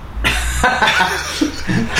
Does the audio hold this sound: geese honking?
no